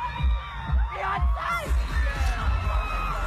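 A young child's high voice shouts and squeals to the singer amid the roar of a big crowd at a stadium concert, with cheering, whoops and thudding concert bass filling the background throughout.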